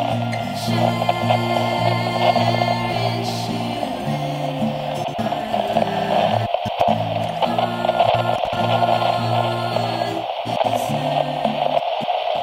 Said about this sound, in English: The static is getting louder, like the message is getting lost. It's very ghostly, like a haunted radio station.